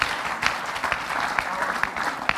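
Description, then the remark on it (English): A steady burst of audience applause fills the whole stretch, many hands clapping densely with a few sharper individual claps standing out, moderately loud. “You can clap and say, I'm not joking.”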